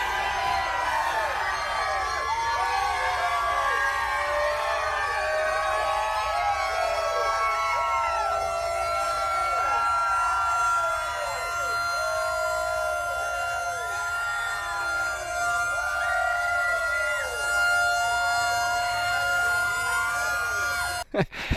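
A loud civil defense siren in Dawsonville, hooked up to what was thought to be a Toyota Corolla, wails steadily for about twenty seconds to celebrate Chase Elliott's first win at Atlanta Motor Speedway. Its sustained tone rings over a noisy, cheering crowd, then cuts off abruptly at the end.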